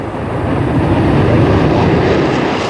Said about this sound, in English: Lifting into the skies with its characteristic elegance and the distinctive roar of the engines, there is no other aircraft like this.